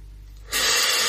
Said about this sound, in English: I love this video because he doesn't really talk, right? He smokes. The close-up of him smoking. And the rest of the video is him just kind of like gasping for air.